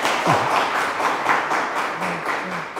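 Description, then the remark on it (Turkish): Steady audience applause at an event in İzmir, a dense wash of many hands clapping at an even loudness throughout, with no speech over it. “Bir alkış alabilir miyiz”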